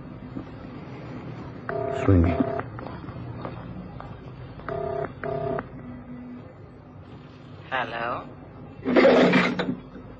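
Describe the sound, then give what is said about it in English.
A telephone number taken from a diary is dialed late at night on a touch-tone phone, with clear beeping tones in two short clusters over a faint background hum, followed by a brief burst of voice near the end. “I've got a phone number somewhere in my diary here.”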